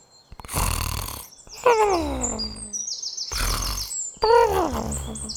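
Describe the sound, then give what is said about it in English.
A small animal snores in two slow cycles, each a raspy, breathy inhale followed by a squeaky, whistling exhale that slides downward, fairly loud. “Her little snores were adorable.”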